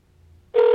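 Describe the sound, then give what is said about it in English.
After a brief stretch of faint low hum, a loud, steady electronic phone ring tone abruptly cuts in and holds, heard over the line of an outgoing call to a toll-free number as it rings several times, with no one speaking. “So we've got the phone ringing.”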